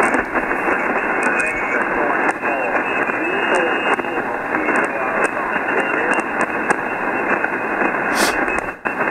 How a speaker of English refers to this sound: The static crashes are just killing us, man. They're just killing us there.